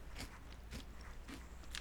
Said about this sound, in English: Is it a brownie? No, it's too crunchy. Is it those brownie crisp things? Yeah. Oh! Oh, those sound good.